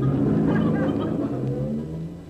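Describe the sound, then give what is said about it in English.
A bus's heavy engine rumbles steadily, its low drone slowly easing off as the bus pulls away. It is fairly loud, with no voices over it. “Uh-oh, there's a bus. Hey, wait! Wait for me!”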